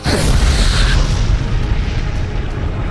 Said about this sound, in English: big explosion right in the water.